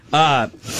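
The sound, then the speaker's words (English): A loud voiced gasp lasting a moment, followed by a short pause and then a rush of breathy air, like someone panting heavily. “All right, the breathing's continued.”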